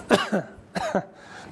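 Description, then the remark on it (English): A man coughs twice, two short harsh bursts with a brief pause between them and no talking. “I don't have a cough switch like we do up at the front on the upstairs.”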